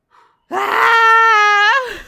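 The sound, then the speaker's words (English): A single voice lets out a loud, sustained yell lasting over a second, holding a steady high pitch before sliding down at the end, preceded by a faint short breath. “The Patreon demon asks you to yell in solidarity with Rain as they attempt to survive the holidays at the postal service.”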